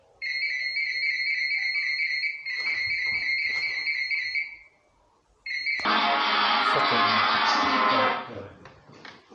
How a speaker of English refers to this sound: How dare somebody phone in the middle of this fucking episode?